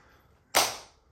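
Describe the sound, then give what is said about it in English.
A single sharp hand clap, made to sync a recording, cracks out of a quiet background, loud and abrupt, with a brief ringing tail that fades over a fraction of a second. No one speaks. “Yeah, so I missed the clapping, I think.”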